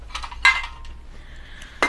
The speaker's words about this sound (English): Anna put down a bowl of water and a bowl of food on the kitchen floor.